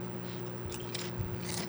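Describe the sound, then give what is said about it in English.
Someone crunches Member's Mark limited-edition ripple potato chips with a chicken bouillon, medium-heat flavour, giving about three crisp, crackly bites in quick succession over a steady low background hum, with no talking. “Good crunch.”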